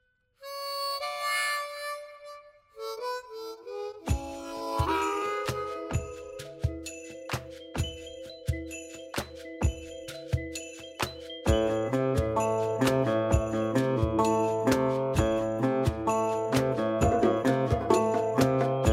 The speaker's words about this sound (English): With a bell ring, we see a gas station.